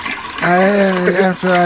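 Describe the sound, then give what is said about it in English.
A toilet flushes, a rushing wash of water with a steady, whining tonal drone over it that breaks off briefly near the end before resuming. “Wait, why would you flush it? Don't flush it. Yeah, I flushed it because I pooped.”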